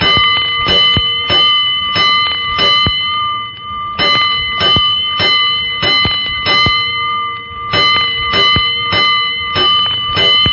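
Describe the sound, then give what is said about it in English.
A loud, bright fire station alarm bell strikes in rapid repeated bursts, groups of sharp metallic clangs separated by brief pauses, ringing insistent with no voices, signaling a five-alarm fire. “Five bells. Stand by all stations.”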